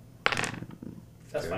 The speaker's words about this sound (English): So roll your dodge. Do you have a dodge? I have a dodge. I have a 2, and then dexterity is 4. So roll six, dice. 6 dice.